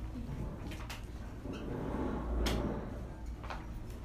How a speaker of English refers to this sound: Can you do me a favor? Can you ask them to not drag the chairs? Thank you.